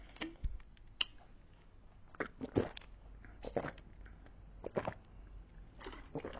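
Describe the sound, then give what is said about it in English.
Several quiet gulps of someone drinking in Bangkok, irregular wet swallows with small clicks between them, spread over a few seconds with no talking. “There's some gulps for you. Gulping in Bangkok.”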